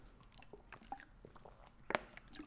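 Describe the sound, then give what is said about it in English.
Quiet sips of water: soft wet mouth clicks and slurps scattered over a couple of seconds, with one sharper, louder gulp near the end and no talking. “The transition will be a sip of water.”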